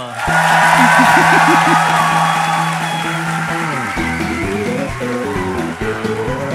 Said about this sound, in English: That's a lot of cheering. That's a lot of cheering.